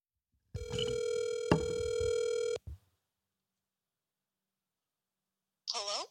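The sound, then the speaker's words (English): A single long electronic ringback tone, steady and buzzy, sounds for about two seconds as a phone call to a friend rings out, followed by silence and then a brief voice answering. “Can I phone a friend?”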